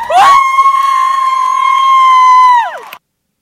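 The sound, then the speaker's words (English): A loud, high-pitched whoop from a woman holding a camera at a graduation in the Marriott Center rises sharply, holds one steady shrill note for over two seconds, then drops away and cuts off, with little sign of a wider crowd beneath it. “The camera slipped as she let out a whoop, a part of a chorus of cheers that echoed through the Marriott Center.”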